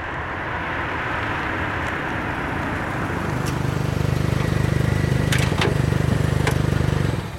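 A truck engine rumbles steadily, growing louder and heavier partway through as it pulls up in front of a town's general store, with a few faint clicks and clunks over the droning motor; no one speaks.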